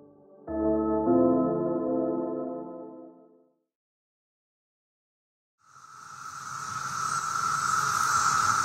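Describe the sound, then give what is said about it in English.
A sustained musical tone fades into silence, then a loud, steady chorus of cicadas buzzes in and drones continuously to the end, shrill and unbroken with no voices. “But this spring, scientists expect hundreds of billions of cicadas from two separate broods to emerge from underground.”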